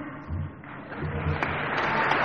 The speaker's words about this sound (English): Hallelujah! This is something to applaud for. This is something to bring an ovation over.